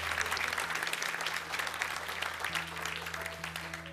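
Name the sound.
audience applause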